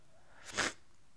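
A single short sniffle, a quick breathy hiss of air drawn through the nose, rising and fading in under half a second against a quiet background with no talking.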